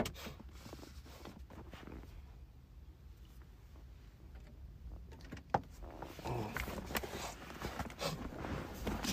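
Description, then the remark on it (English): A person blows their nose, a sharp click followed by several seconds of rough, breathy honking bursts that grow louder toward the end, with no talking. “I'm going to blow my nose here.”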